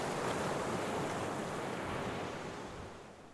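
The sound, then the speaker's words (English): Rough sea waves crash and churn in a dense, continuous roar while wind rushes over them, loud throughout before easing slightly at the very end. “With the wind howling in their faces, spraying their bodies with icy water, they grabbed Jonah and heaved him into the dark and raging sea”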